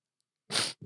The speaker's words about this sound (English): Right? No, you're just sniffing. All right, let's give him a minute. No, because I know I can sniff. World class sniffer. Oh, I can sniff on cue.